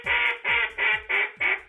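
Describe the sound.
A rapid series of five loud, raspy quacks from a handheld duck call at a duck calling contest in Arkansas, evenly spaced, mimicking a mallard with no voices present.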